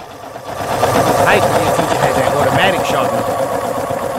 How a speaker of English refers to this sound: Y'all remember that? That gray sharpener hanging off the wall? Somebody constantly got to sharpen their damn pencil? Here they go. How the hell are you supposed to concentrate through that?